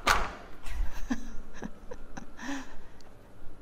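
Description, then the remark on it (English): A hotel room door on the 30th floor of a Hyatt hotel being handled: a string of sharp latch clicks and knocks, then a soft closing thud, spaced irregularly over a quiet room hum. “He was directing me to record the sound of the door.”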